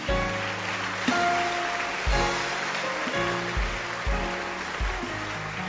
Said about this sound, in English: Please follow them now. Or keep clapping your hands for them.